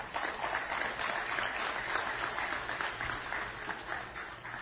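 An audience breaks into steady applause, a dense crackle of many hands clapping at an even level for several seconds with no one speaking.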